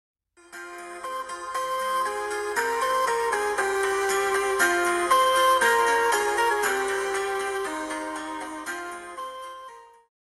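A melodic electronic ringtone plays for about ten seconds as a phone call is placed, a bright chiming tune of stepping notes at steady volume, clear with no voices, fading out at the end.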